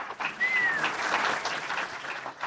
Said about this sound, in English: Last time the word Cosby will be followed by applause.